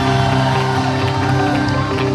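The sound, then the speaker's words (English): A large audience shouts and cheers together in a loud, sustained roar, voices overlapping into a dense, continuous wall of excited crowd noise. “Then you should be shouting better than you're doing.”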